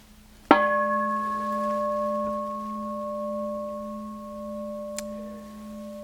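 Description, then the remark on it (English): A meditation bell is struck once, sending out a low, steady hum layered with bright overtones that ring on and fade very slowly for several seconds, with a soft tap near the end. “And so, even such that you can, if you listen, hear the reverberations till the very end.”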